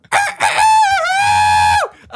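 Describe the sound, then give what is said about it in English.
A rooster crows once, loud, with a choppy start, a long sustained note and a falling end. No other sounds accompany it. “I need a rooster.”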